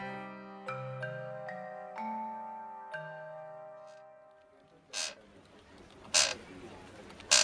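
chair creaking

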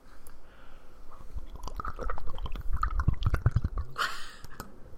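person gulping down water

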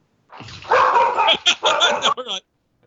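dogs barking

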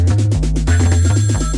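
phone ringing

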